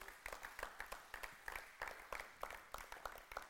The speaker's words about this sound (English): Give Phil Cairns a hand clap.